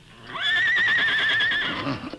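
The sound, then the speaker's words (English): A single loud whinny from the horse Scout at a camp in a grove, a sustained quavering high-pitched neigh that trails off after about a second, with no voices. “Suddenly, he was awakened by a whinny from his horse, Scout.”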